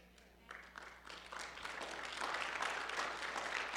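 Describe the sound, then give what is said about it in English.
An audience breaks into applause, starting with a few scattered claps and quickly swelling into a steady, dense wash of clapping that holds at a moderate level. “So, with the applause, I'm asking you to get involved.”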